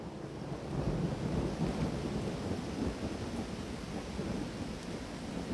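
Steady rain with a deep, continuous rumble of thunder underneath, a dense, even wash of sound that holds at the same level throughout, with no voices.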